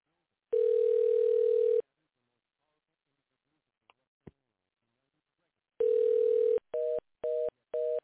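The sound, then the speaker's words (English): A steady phone tone sounds during a call to an invalid California phone number, then two sharp clicks and silence, followed by another tone and three short, evenly spaced beeps like a failed-call signal. No one speaks. “Nope. That number is no good.”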